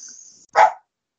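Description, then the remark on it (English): A single sharp, loud dog bark, preceded by a faint high-pitched hiss, with silence afterward. “Even the dog's not happy.”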